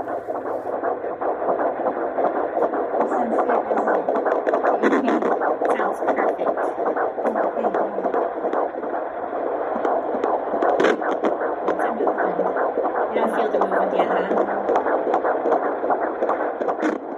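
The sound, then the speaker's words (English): A fetal heartbeat on a Doppler ultrasound, done by a doctor on the mother's belly, pulses fast and steady through loud whooshing static, with occasional staticky noises from the baby kicking, filling the whole recording with muffled voices talking faintly underneath. “Sorry it's so hard to hear us talking above my baby's incredible heartbeat.”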